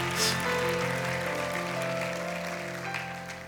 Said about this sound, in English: Can someone give the Lord a clap offering to that? Hallelujah.